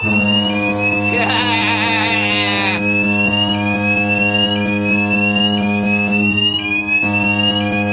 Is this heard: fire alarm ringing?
yes